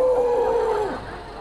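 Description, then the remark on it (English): A crowd of college students cheers in deep voices, a sustained low whooping tone that holds steady for nearly a second, then slides downward and fades into softer crowd noise. “College, they get deep.”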